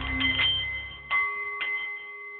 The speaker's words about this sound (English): The Nepalese meditation bowl is chiming, centering your mind and delight on the art of the CEO.